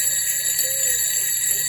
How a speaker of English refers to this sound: What's that noise? I hear some bells.